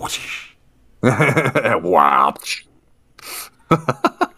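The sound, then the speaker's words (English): A voice imitates laser whip cracks: a hissing burst, a sung, swooping zap, another sharp hiss, then a quick run of clicking snaps. Fairly loud, with no ordinary talk. “I've got my laser whips.”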